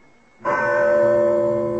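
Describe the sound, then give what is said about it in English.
A single loud bell, used on an estate to summon servants anywhere on the grounds, with different rings for the gardener, chauffeur and butler, is struck; its bright ringing tone sounds suddenly and sustains with rich, layered overtones as it slowly hums on, with no voices. “Well, that is quite a bell to summon the servants.”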